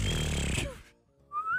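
A rough, breathy blowing sound sputters for a moment, then after a short pause a thin, wavering whistle tone briefly emerges, like someone struggling to whistle up close.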